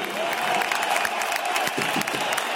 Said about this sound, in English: Some fans stood and clapped for the defender, but others whistled and jeered every time Kadiev touched the ball.